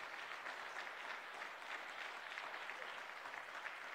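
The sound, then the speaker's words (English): An audience claps steadily during a morning church service, a dense, continuous patter of many hands with no pauses, holding an even loudness throughout with no voices on top. “You're going to clap better than that this morning.”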